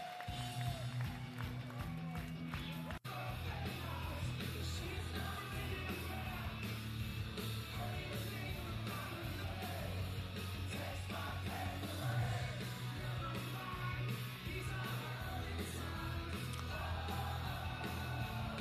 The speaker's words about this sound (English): I love how much of the crowd you can hear.